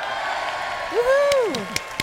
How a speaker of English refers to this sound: Studio audience goes buck wild for Carly Montana.